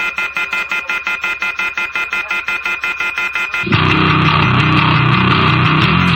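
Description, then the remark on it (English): A telephone left off the hook during a recording: rapid, evenly pulsing electronic beeps that abruptly give way to a loud, harsh, continuous blaring tone rich in buzzy overtones. No voices. “Somebody left the phone off the hook when they were recording it.”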